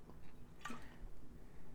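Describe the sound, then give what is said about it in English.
A single quick, wet slurp of beer being sipped, short and soft, with a faint gulp and no talking around it. “Took a little sip of my beer, sorry.”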